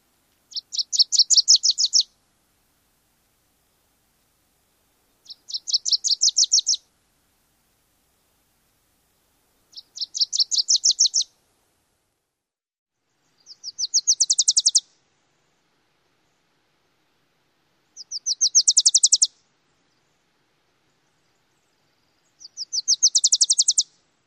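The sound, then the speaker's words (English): Six short, high, rapid chattering songs of a Wilson's Warbler repeat at steady intervals of about four seconds, each a quick sweet series of notes rising slightly toward the end, with silence between them. “The overall tone of the Wilson's Warbler is sweet, and the warble is fairly fast.”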